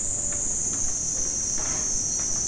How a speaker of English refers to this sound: In Japanese, they imitate like meme. Cicada, yeah. All you hear is cicada.